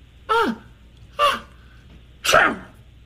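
Three short, sharp sneezes in quick succession, each a bright burst with a falling squeaky edge, close up and spaced about a second apart, with no talking around them.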